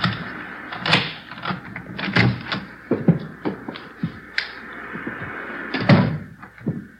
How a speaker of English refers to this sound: Here's the front door key. See if you can work it. I know how it works. You go ahead and open it.